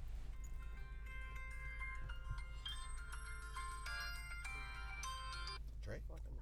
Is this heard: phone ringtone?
yes